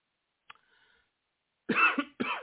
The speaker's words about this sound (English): I know, the first time, unprofessional. I coughed on a live mic, but then again, I got a sore throat